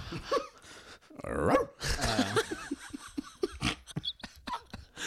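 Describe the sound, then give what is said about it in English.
A voice imitates an old, thirsty hound dog, with eager whimpers, yelps and short bark-like bursts mixed with panting, fairly loud and continuous for about five seconds. “Like an old thirsty hound dog.”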